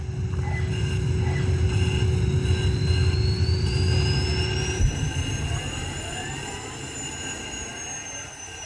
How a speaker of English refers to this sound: Oh, here he is. That's a breakdown truck. It's just a recovery bloke in a spaceship. Force recovery.